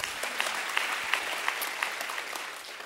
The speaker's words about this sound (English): you can clap for that. It's all right.